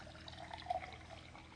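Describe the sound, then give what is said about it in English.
Clean water is squeezed out and poured steadily into a cup, a soft continuous splashing with faint drips, quiet and unbroken for a couple of seconds with no voices. “You can drink that one if you really want, but pour it in there first. Like squeeze it, give it a good squeeze.”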